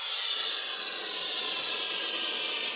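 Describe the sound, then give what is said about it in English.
A steady, bright hiss of sulfur hexafluoride gas rushing into a balloon as it fills, continuous and fairly loud for the whole stretch with no voices over it. “You can even hear it sounds weird when it's filling.”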